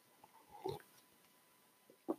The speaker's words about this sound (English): Taking a sip, guys. One moment.